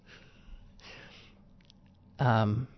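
A long, breathy yawn: a drawn-out airy inhale, then a short, loud voiced groan at the end, close to the microphone with no words spoken.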